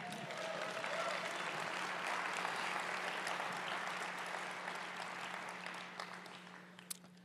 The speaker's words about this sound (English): You could say whatever the fuck you want, but let's give this man some love and let's clap it up for him.